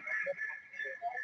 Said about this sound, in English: Echo. A huge echo. Ooh, feedback. I'm gonna turn that down.